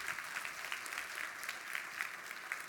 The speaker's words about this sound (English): Thank you, guys. Y'all give it a round of applause for them.